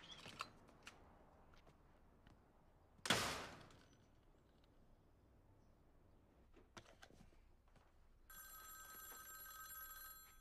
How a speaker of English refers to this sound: Oh. Who's it gonna be? What the hell? What was that purpose for? That phone call? That was weird.